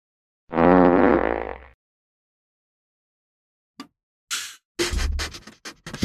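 A single loud, buzzy fart-like noise lasting about a second, followed after a pause of silence by several short scratchy rustling bursts.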